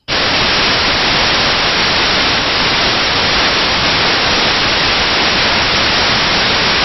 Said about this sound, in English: to hear a live, real-time, artificial intelligence noise reduction of a standalone program that does nothing but generate white noise. In fact, here, I'll show you the white noise first. Sure. This is what we are going to reduce. This is the source.